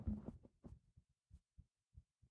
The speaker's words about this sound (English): And I have the mic just like in between my tits. And like, I'm about to listen, you're gonna hear my heartbeat.